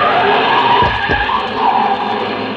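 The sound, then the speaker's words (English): A car starts up down a street at night and roars away with a loud, sustained rush of engine and screeching tires, steady for a couple of seconds, no voices. “It was a short trip because a car started up down the street, and the old man couldn't have made it with a pocket full of aces.”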